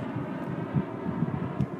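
An airplane drones overhead as a steady, low, muffled rumble over a very quiet polar desert, with no other sounds and no voices.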